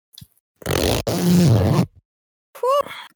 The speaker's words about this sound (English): I got a mic. Good microphone. Okay, there we go. Bro, it's so good, though, because it came with, like, this leather pouch. Listen to the zip. Hang on, ready? Let me just move my thing. Listen to the zip, ready?